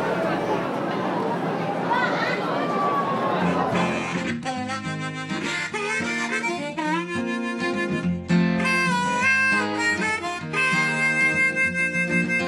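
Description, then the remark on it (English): Carnival ambience: a few seconds of busy crowd chatter, then loud, bright fairground-style music with sustained notes and steady rhythmic chords takes over and carries on over the murmuring crowd. “All right, I'll leave you with a little more carnival sounds”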